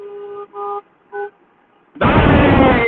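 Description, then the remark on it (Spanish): Car horns honk three times in quick succession, then a loud, dense wash of traffic noise rises abruptly from a caravan of roughly 3,000 to 4,000 cars passing. “Increíblemente, esto es uno de los momentos más grandes que he visto de caravana de autos. Aproximadamente 3.000, 4.000 automóviles.”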